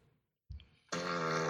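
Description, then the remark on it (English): A short, muffled low fart thumps out after a moment of silence, then a much louder, buzzy sustained rasp starts and runs to the end. “That was a muffled one.”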